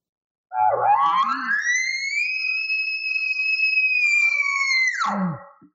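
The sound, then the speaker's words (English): An imitated bull elk bugle: a low, raspy start sweeps up into a long, steady, high-pitched whistle held for about four seconds, then drops abruptly into a short low grunt. No talking. “And that's a real standard bugle sound in the woods.”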